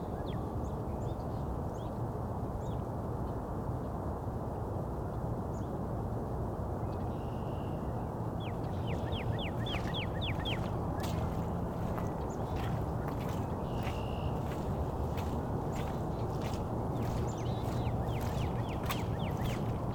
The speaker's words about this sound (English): Also some high-pitched calls. Finch calls of some kind.